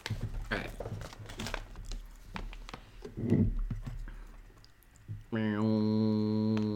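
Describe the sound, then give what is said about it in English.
Crisp crackling and snapping as potato chips are broken into smaller pieces in irregular bursts for several seconds, then a sustained humming tone takes over at the end. “Okay, I broke some of them, so that way we have more. Oh, man, ASMR, baby.”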